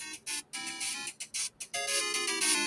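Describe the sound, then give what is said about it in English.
A retro video game tune from Duck Hunt plays alone: bright, buzzy electronic notes in short choppy bursts, then a longer sustained stretch of a higher, steady melody. “Did you hear it? Duck Hunt?”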